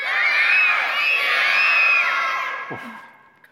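A group of children shout and scream together in a loud, sustained burst of high-pitched voices lasting a few seconds, then fading out abruptly.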